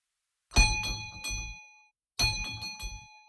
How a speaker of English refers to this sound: Ring the bell. I'll hear it. Ring it loud.